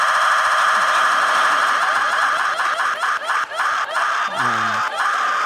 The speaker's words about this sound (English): To the elected leaders who have lended some credibility to this show, we replaced the ticking sound of our wheel with the sound of a woman screaming.